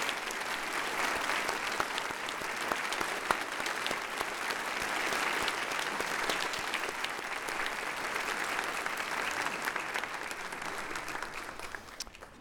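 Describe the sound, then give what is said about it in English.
A crowd claps steadily in a sustained round of applause for veterans standing up on Veterans Day weekend, a dense, even patter of many hands that holds at a fairly constant loudness for about twelve seconds before easing slightly at the end. “And how about we have all of our veterans stand up so that we can give you a round of applause?”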